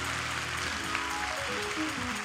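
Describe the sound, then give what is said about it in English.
An audience at West Angeles church claps their hands together to praise God in a dense, steady wash of applause, with sustained low musical tones humming beneath the clapping throughout. “If you want to be refilled, clap your hands and praise God for your refilling.”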